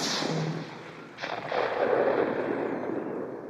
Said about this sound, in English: I heard this rifle shot. And it was clearly a rifle shot, and it came from over my right shoulder.